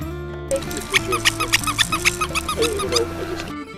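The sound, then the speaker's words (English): The squeaker wings of a Tolo Crazy-Eyed Bird baby rattle toy give a quick run of high, bright squeaks, roughly eight in an uneven rhythm, over a steady low musical backing. “Squeaker wings.”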